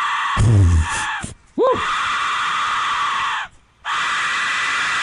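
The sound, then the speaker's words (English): A harsh, piercing Aztec death whistle shriek, a noisy scream-like wail with a rough, breathy texture, sounding in long loud blasts broken by short pauses, with a brief rising-falling tone between them. “So here's a 16-second piece of audio, I'm assuming to be an Aztec death whistle at KQ.”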